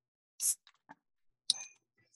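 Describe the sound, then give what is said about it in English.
A can of Krausch's Creation, a Helles Lager beer, is cracked open on the microphone: a short airy hiss, a few small clicks, then a sharp metallic snap with a brief ringing tail, with no talking. “It's a Helles Lager. So I'm going to crack it on the mic and I'm going to listen to you just talk about your life.”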